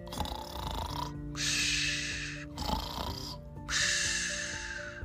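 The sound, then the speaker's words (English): A sleeping Kermode bear snoring in slow, heavy cycles: two long, raspy breaths with a rough rumbling throb between them, fairly loud, with no talking. “That was the snoring sound of a magical Kermode bear.”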